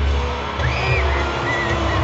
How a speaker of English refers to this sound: he is the one you can hear throughout the entire arena cheering.